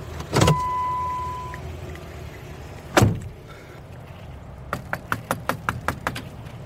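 A quick, even series of about eight fairly sharp knocks on a door outside a screened-in porch on the front of a house, following two heavier thumps earlier; a low hum runs underneath and no one speaks.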